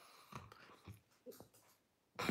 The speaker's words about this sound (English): So, folks, the first thing is when you wake up in the morning throughout the day, stop, take a breath.